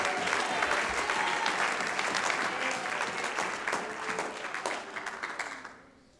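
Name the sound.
audience clapping hands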